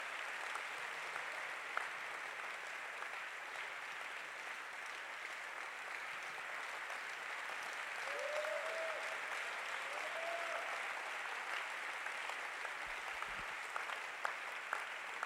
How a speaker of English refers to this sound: Clap your hands together for Jesus Christ.